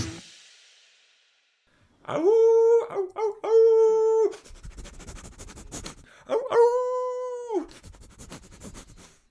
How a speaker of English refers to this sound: I didn't know you had a dog,